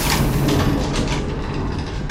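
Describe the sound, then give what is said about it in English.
An airlock door on the International Space Station slides shut with a steady, loud mechanical rush of hissing air over a low rumbling hum, ending in a brief sharp burst of hiss. No one speaks. “You mind closing that airlock behind you?”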